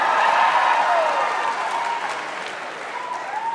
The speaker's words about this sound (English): Round of applause if you have anxiety.